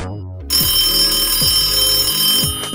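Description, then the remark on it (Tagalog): An electronic phone ringtone plays steadily as a call is placed to a friend for a three-way call, with a bright, buzzy tonal texture and a repeating pulse roughly every second, loud and continuous with no talking over it. “Sinong gusto mo tawagan?”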